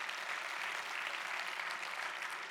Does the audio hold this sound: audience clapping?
yes